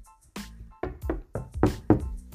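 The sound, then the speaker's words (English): A series of about six firm knocks on a wooden door, fairly loud, coming in a steady uneven rhythm with no voices. “Just then, there was a knock at the door.”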